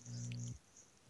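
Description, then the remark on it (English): A cat being petted makes a short, low, steady purring sound for about half a second, then everything falls quiet. No one speaks. “Oh, this cat's so cute.”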